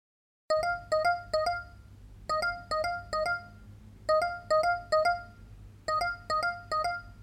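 A phone rings with a bright electronic ringtone, repeating short bursts of tones in groups of three or four, fairly loud, over a low steady background hum with no talking.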